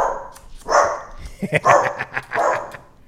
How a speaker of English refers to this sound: Let's wait for the dog to stop.